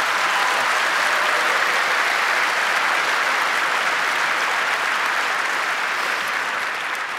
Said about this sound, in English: Please give them both a big round of applause.